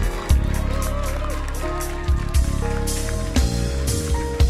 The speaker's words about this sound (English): Yes. Oh, I thought you were clapping. I don't understand why your clapping is becoming anemic.